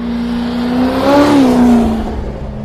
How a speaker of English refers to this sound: Right, there's a V8 coming, so you're going to hear this really loud car go past.